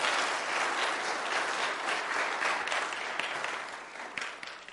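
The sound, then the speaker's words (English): Sustained applause from a church audience, a dense wash of many hands clapping at steady loudness for several seconds before thinning slightly at the end. “I think that applause is well deserved.”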